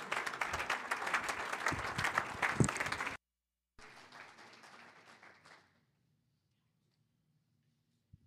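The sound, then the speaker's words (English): An audience gives the Lord a clap offering as the pastor comes, bursting into loud, dense applause for about three seconds, stopping abruptly, then a second, softer round of clapping follows and fades out into near silence. “Let's give the Lord a clap offering as our pastor comes.”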